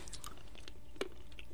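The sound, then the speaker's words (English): Chewing of a piece of dark chocolate, with soft, irregular crunching mouth sounds and one sharper bite snapping through midway. No one speaks. “A little more crunchy. It's got more cocoa. It doesn't melt as fast, but it melts in your mouth there.”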